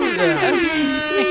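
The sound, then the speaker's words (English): A voice imitates an air horn with a loud, sustained, brassy blare lasting just over a second, its pitch wobbling slightly, alone. “When I can edit this. I'll be able to add air horns.”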